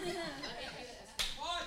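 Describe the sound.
A single sharp slap on the back of someone's head, crisp and close, landing amid talking voices and a bit of laughter.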